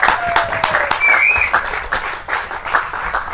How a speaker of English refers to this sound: It's a great day for our four-legged friends in Johns Creek. So let's give that a round of applause.